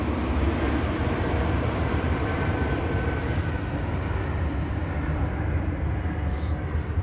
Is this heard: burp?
no